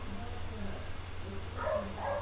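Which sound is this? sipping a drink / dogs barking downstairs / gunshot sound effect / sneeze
dogs barking downstairs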